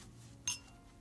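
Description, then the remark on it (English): A single bright clink of glasses touching in a toast, with a short ringing tone that fades quickly against a quiet background. “Cheers.”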